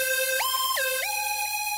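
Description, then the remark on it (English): A phone's twinkle alarm tone blares in the wee hours before sunrise, a short electronic melody of bright synthetic notes stepping up and down in pitch at a steady, fairly loud level with no voices. “Sleepy-headed and bleary-eyed, I squint at my phone as it blares a so-called twinkle alarm call.”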